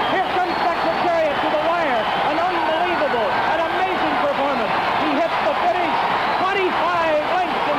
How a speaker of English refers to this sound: I mean, the crowd, they probably had 200,000 people there at Belmont to witness Secretariat win the Triple Crown. You can listen to the crowd. Obviously, the audio isn't great because it's so long ago.